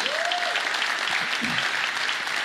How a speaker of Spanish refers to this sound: Muy bien. Gracias, gracias. Denle un aplauso a Dios.